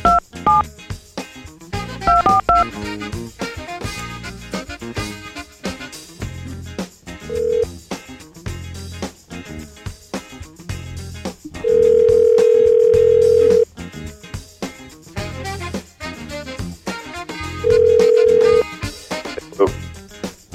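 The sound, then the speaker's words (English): A quick burst of telephone keypad tones at the start, followed by steady ringback tones sounding twice over a busy music bed, fairly loud, as a phone call is placed to Hulk Hogan. “Hulk Hogan is on the phone.”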